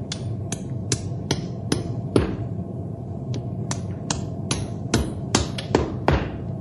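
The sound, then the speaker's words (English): A farrier hammers a shoe onto the hoof of a horse named Storm: a dozen or so sharp metallic taps in an uneven rhythm, ringing brightly over a low, steady background rumble, with no one speaking. “I'll rasp his hoof smooth to the shoe, and he can run to his heart's content.”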